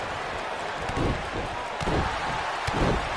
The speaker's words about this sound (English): As we get ready here, Brock immediately with a huge clothesline to knock down Jim the Anvil Neidhart.